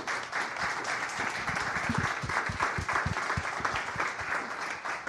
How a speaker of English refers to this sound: But I just wanted to thank all of our presenters here tonight, all of our guests on the show. Could we give a huge round of applause to our awesome guests here?